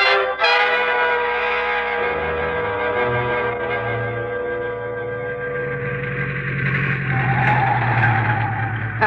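A car driven at speed on the road from Nogales, its tires squealing and skidding in a loud, continuous high-pitched whine, its pitch wavering and bending over several seconds above a rumbling engine, with no voices.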